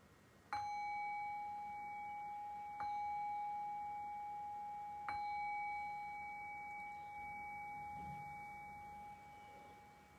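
meditation bell ringing

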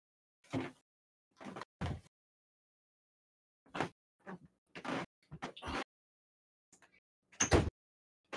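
door being closed

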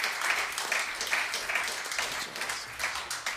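audience round of applause

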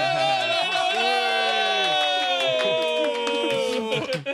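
crowd cheering and clapping

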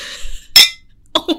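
glasses clinking

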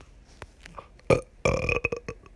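burp

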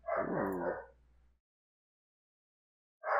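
puppy barking

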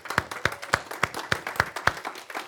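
audience applauding

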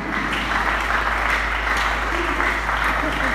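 audience clapping

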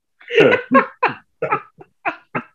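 coughing fit

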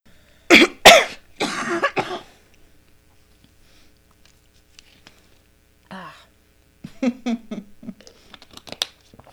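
coughing

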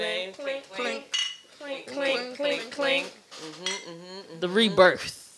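glasses clinking

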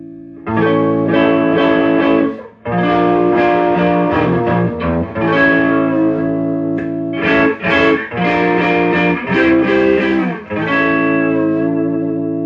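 electric guitar through amp

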